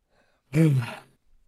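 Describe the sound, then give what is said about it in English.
One drawn-out, exaggerated, overdramatic yawn, voiced at first and dropping in pitch before trailing into a breathy exhale. It is fairly loud, with no talking around it. “… noticeably yawns, like, makes it overdramatic.”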